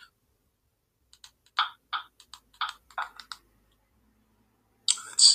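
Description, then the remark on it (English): A burst of quick typing on a computer keyboard, irregular clicks and taps clustered over a couple of seconds, followed by a pause and then a louder, sharper clatter near the end. No one speaks. “I'm like thinking two and three moves ahead, and I keep typing the same stuff in.”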